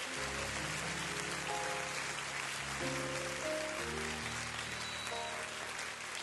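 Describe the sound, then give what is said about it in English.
A church audience claps their hands in a dense, steady wash of applause that fills the whole stretch, while sustained keyboard or organ chords shift underneath. “Clap your hands and say, God, give us favor in this church.”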